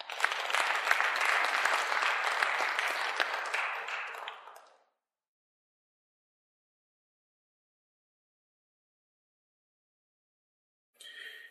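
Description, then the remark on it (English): A crowd applauds with dense, steady clapping for about four seconds before it fades out, followed by a long silence and a brief burst of sound at the end. “Please give everybody a quick round of applause there.”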